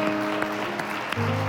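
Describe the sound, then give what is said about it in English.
An audience claps steadily for God after a prayer to receive Jesus, a dense wash of many hands, over sustained organ-like chords that shift to a lower, fuller chord near the end. “Can we just give God a hand clap for those?”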